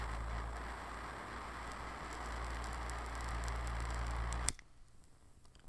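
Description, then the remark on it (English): Something lit by a butane torch crackles under a steady, rushing hiss, with scattered sharp pops and ticks for about four seconds before the noise cuts off abruptly into near quiet. “Here we go. Hear the crackle?”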